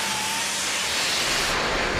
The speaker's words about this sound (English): Uh-huh. Engine running.